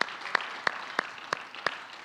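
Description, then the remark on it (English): A church audience claps for the Lord over a steady wash of applause, with about five louder, evenly spaced beats landing roughly three times a second. No one speaks. “Let's give the Lord one more mighty hand clap.”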